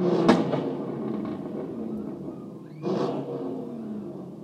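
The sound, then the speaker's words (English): A car engine revs loudly outside, a sustained low roar that surges sharply at the start and swells again near the end, with no voices; the car has lights fitted underneath it. “Do you fucking mind? That guy has got actual lights under his car as well.”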